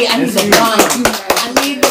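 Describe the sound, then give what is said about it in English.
A run of about eight sharp hand claps at a steady, moderately quick rhythm, each a crisp slap, layered over a continuous voiced tone from someone vocalizing underneath. “We gotta clap it up.”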